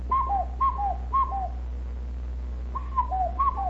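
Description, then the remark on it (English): A hand-cupped whistle mimics a cuckoo, repeating soft two-note falling hoots three times in a steady rhythm, pausing briefly, then resuming with a few more calls over a low background hum. “That sounds just like a cuckoo, doesn't it?”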